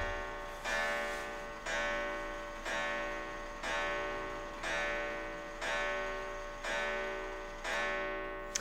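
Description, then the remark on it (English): An antique clock ticks loudly and steadily, about once a second. Each tick has a bright, ringing metallic edge that fades before the next one. There is no talking. “And that is the antique clock.”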